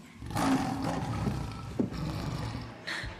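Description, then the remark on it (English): A man, a father, imitates a lion's roar with one long, throaty growl, loud, ending in a short breathy burst. No words are spoken. “You used to do a good lion roar. Do it now, Dad.”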